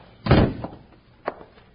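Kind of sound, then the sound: household object, door being closed shut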